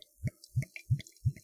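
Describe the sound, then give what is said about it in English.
Craft beer glugs out of a bottle into a glass in four even, hollow gulps about a third of a second apart, fairly quiet, with no voices. “Going to go ahead and pour this bad boy.”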